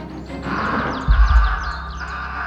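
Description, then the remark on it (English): A crow screeches as it attacks a person tangled in a coat, pecking and clawing, amid a flurry of harsh, rapid bird calls over a noisy, windy background, with a few heavy low thumps like wingbeats or scuffling. “The crow screeched, pecking at his eyes.”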